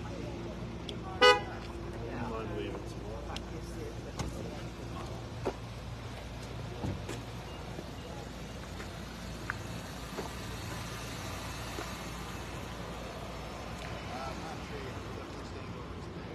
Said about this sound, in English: All right, folks, I'm going to move to this other side just because there's a lot of cars coming up here.